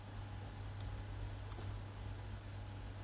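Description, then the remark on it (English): A few sparse, sharp clicks from a mechanical keyboard, faint and irregular, spaced out over a low steady hum with no one talking. “It's those mechanical keyboard people.”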